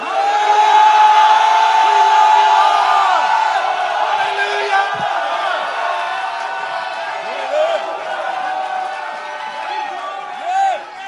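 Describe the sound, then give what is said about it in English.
A large church audience in a tent shouts and cheers for joy loudly and continuously, giving glory to God, voices overlapping in a sustained roar with scattered whoops rising above it. “And we want you to have shouts of joy and victory that resound in this tent today.”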